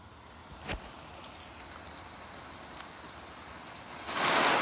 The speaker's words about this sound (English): It was a cold, rainy night in Berlin.